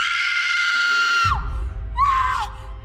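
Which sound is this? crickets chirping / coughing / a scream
a scream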